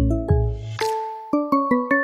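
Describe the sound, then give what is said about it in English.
A bright, bell-like segment transition chime melody: a low resonant swell and a couple of ringing tones, then four quick, evenly spaced ding notes that sustain and overlap, clear with no voices. “Well, you know what time it is, because I hear that chime.”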